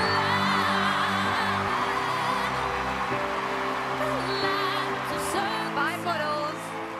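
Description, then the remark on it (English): The America's Got Talent audience cheers and applauds Puddles the Clown steadily over sustained music, with a few whoops rising out of the roar before it eases slightly near the end. “So you have heard the resounding applause from those who were in attendance at America's Got Talent.”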